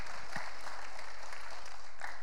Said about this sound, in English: There we go. I'll take a round of applause for that. Praise the Lord.